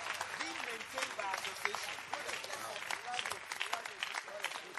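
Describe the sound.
A church audience claps for Jesus during a sermon, steadily for about five seconds, a dense, continuous wash of many hands at even loudness, with scattered voices mingling under the applause.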